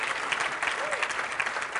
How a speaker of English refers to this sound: Clap better than that. Clap better than that. Clap better than that.